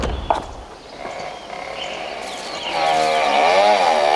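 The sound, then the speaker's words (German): Herr Dürrmeier's vehicle engine rumbles and revs up, its droning pitch wavering and rising as it drives away, growing steadily louder over a few seconds with no one speaking. “Herr Dürrmeier fährt weg.”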